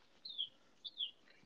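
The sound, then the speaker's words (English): Two clear, high descending bird chirps sound in quick succession, followed by a fainter twitter, set against quiet outdoor ambience on a fine day with a nice breeze blowing, with no talking. “But yeah, it's nice just to hear the birds, and, you know, there's a nice breeze blowing right now.”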